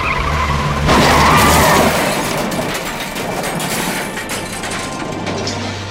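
Car tires skid loudly as a car swerves to avoid a deer in the middle of a dark, foggy road, a harsh screeching burst that flares after the first second and drags on as a rough, scraping rumble with a low engine drone underneath.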